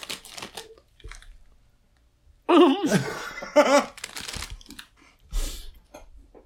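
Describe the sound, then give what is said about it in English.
A bag of Pop-Tart Bites crinkles and rustles in short bursts, with the loose rattle of pieces being poured out into a hand, broken up by a stretch of laughter in the middle. “Pour one in my hand, dude.”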